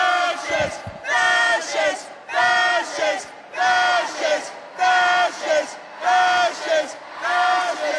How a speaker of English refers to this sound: Yes, and she walked down a hallway, and that's when people were just screaming left and right because they wanted to obviously give her a lot of attention as this is going on. As you can hear, people nonstop.